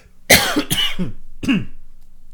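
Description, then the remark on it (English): A loud burst of coughing: two quick harsh coughs back to back, then a third rougher cough after a short pause, with no talking. “there may be plenty of coughing in this podcast.”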